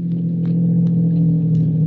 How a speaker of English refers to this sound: We went out, got into his car, started for the gate.